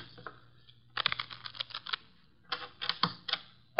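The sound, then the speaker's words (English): A deck of playing cards is shuffled for a hand of poker, with two quick bursts of crisp, rapid fluttering clicks separated by a brief pause, with no talking. “The cards are shuffled.”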